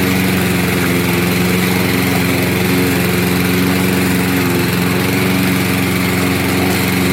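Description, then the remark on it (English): A small gas-engine lawn edger drones steadily for several seconds, a loud, buzzy whine with a constant low hum underneath, running without pause. No one speaks. “Joseph said he's edging afterwards.”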